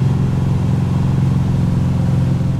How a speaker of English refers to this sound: With a cue to the boat driver, the boat takes off, loops around the lake, and lines Carrillo up with the ramp.